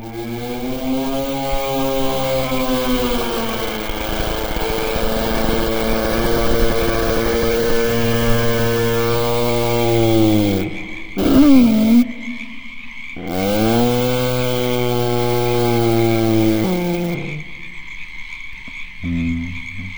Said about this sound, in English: More likely the monster baby Chris and I made by slowing the sound of a crying baby down and distorting it over the sound of frogs chirping in the night.